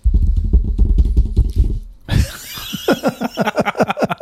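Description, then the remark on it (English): Rapid, rhythmic tapping of fingers drumming on a table, first as dull low thumps, then as a brighter, sharper patter of quick repeated taps. “That was you drumming your fingers on a table.”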